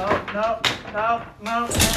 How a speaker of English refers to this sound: And you fell in your chair